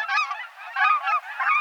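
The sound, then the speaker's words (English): Small cackling geese call in a quick, overlapping chorus of high, yelping honks, steady, with no other sounds around them. “Look and listen for pint-sized cackling geese this fall at refuges, in farm fields, and at other spots where migratory geese gather.”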